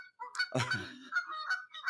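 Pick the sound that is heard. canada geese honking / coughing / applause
canada geese honking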